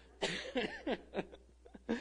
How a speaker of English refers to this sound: I'll just hack and cough, and they can coo, and it'll be all right.